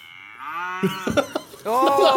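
A cow moos loudly, a long drawn-out low call that wavers and breaks off, then swells into a second strong moo at the end. No one speaks.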